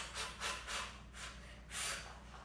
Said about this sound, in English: Just for breathing, just by breathing out. Why? Because transversus abdominis, which is like, you know, the supporter of our spine, basically, it's like what gives us mobility and stability, okay, is activated by the exhale, okay?